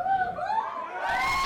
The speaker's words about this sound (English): How many Indians can yell out like the Canadians just did? Ready? 1, 2, 3.